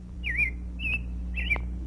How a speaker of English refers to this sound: Listen, the bird is singing. My mother killed her little son. My father grieved when I was gone. Real words he's singing.